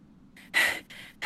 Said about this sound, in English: … is panting and turns around.